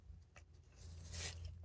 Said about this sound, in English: hold on, I gotta take a sip of this coffee before it gets cold.